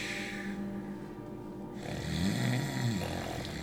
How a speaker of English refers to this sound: … is a snorer.